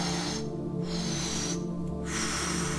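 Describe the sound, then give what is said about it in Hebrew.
Deep, forceful breaths drawn in and pushed out through the mouth in a steady rhythm, roughly two cycles, over a constant low humming drone; the first breaths of a 30-breath set in a breathing exercise. “נשימה ראשונה.”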